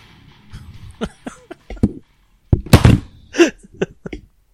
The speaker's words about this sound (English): Did you just fall over? Yeah, that's how impressed I was with that one. I just knocked my mic over.